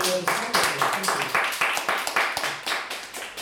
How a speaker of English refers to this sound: So, I think we should just have another round of applause for our four wonderful guests.